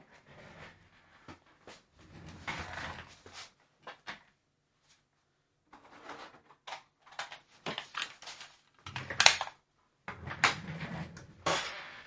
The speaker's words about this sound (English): Oh, sorry about all that squeaky chair noise.